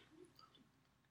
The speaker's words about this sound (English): You know what's weird that I don't feel like I noticed so much? I really like this cookie. Yeah. It's very crunchy.